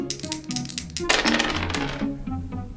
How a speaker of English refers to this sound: In the first one, they were asked to try to roll a 10 with a pair of dice to get their player home and win the game. So you need to roll a 10 in order to win the game. Okay, I can do that. Here we go.